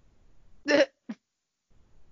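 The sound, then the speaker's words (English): A small dog, thought to have a collapsed trachea, gives a short, harsh cough: one raspy burst followed quickly by a briefer second hack, with near silence around it. “I'm like 80% sure she has like tiny dog collapsed trachea and just can't help it.”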